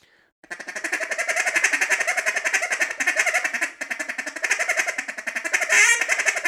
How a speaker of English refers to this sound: So that's the pressure. The pressure is what makes it sound like a duck. There's a huge difference right there. Huge difference.